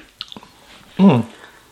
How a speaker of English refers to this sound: First rise, a crisp and assertive sip of liquid motivation.